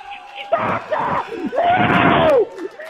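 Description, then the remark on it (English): A Philadelphia stadium crowd of Eagles fans cheers wildly in loud surging bursts, with a long shouted voice rising and falling above the roar before it briefly dips. “the crowd here is going insane.”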